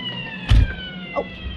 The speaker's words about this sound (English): Oh, Simon, a police siren.